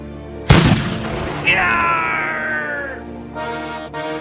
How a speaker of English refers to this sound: But I do have a cannon.